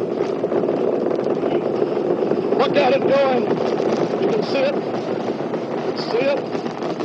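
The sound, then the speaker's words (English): A steady, loud, rushing roar of a space shuttle launch at liftoff at 7 a.m. Eastern Standard Time, the rocket rising into the clouds at 3,000 feet on the last flight of the space shuttle program, fills the whole clip without letting up, while a person talks over it. “The roar is terrific.”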